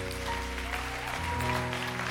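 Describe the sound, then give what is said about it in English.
At a Christian worship service, right after a prayer, a crowd claps steadily, a dense, continuous patter of many hands, with sustained low keyboard or organ chords playing underneath throughout. “Can we give a hand clap?”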